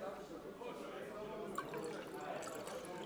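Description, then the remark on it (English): Liquid glugs and splashes steadily as it's poured into an enamel mug right next to the microphone, outdoors by a fire near a river in a forest, a continuous gurgling pour lasting a few seconds while voices talk and exclaim over it. “The glug ruined by you going, whoa, yes, and me going.”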